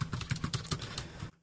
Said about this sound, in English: And you get just a little sound, a little feedback. You know, you can feel it click when you touch a key, so you know you've pressed it.